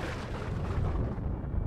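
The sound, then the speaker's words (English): Lightning strikes one of the trees in a front yard at night, setting it ablaze, with a loud, deep, thunderous blast that rolls on as a heavy, sustained rumble, its crackling edge softening toward the end. No voices. “Lightning lacerated the night sky, blasting directly into one of the trees in the front yard.”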